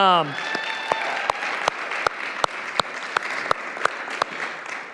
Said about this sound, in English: Could we, in the room for a moment, could we give him a round of applause?